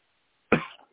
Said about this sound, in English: Okay. And bear with me here. I'm coughing and choking a little bit. I'm just a mess.